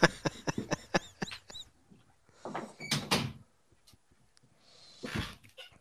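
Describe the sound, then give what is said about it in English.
A door is shut: a quick run of squeaky creaks and clicks, then a solid thump, followed by another knock a couple of seconds later, with no one talking. “Well, hold on, I gotta close the door again.”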